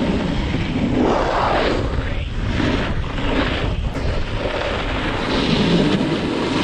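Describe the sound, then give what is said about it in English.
A snowboard scrapes and crunches across snow in a loud, continuous rough hiss that swells and eases in long sweeps, with a rushing, wind-like roar underneath and no voices. “The loud scraping and crunching sound of a snowboard was unsettling for some skiers.”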